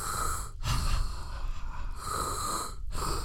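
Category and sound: vocal imitation, imitated heavy respirator-style breathing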